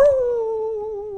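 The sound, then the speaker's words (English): A voice imitates a dog's howl in one loud, sustained, wavering tone that slides slightly downward and holds steady for about a second, with no other speech. “So it went to, and I can't believe this, holy howling.”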